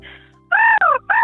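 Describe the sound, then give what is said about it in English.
A caller on the SAFM radio show Beck and Soda imitates a bird call: a loud, nasal, cawing squawk with a brief break, then a shorter second squawk, with no other talking. “what's your bird, what's your animal impersonation?”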